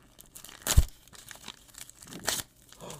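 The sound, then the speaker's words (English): Wrapping paper being ripped off a gift holding a Venus flytrap, crisp, with two loud tearing bursts and softer crinkling and rustling between them, no voices. “You don't have to be careful with the paper. You could just rip it off.”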